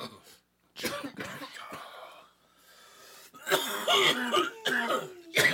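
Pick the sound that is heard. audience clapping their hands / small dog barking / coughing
coughing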